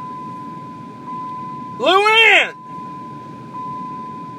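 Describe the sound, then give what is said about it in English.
A truck's seatbelt warning chime, sounding because the driver is not wearing his seatbelt, holds a steady, high-pitched electronic tone through the whole clip, while a man briefly shouts one word over it midway. “She's complaining that I don't wear my seatbelt.”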